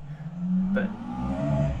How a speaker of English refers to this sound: Sorry, that's a very loud motorbike.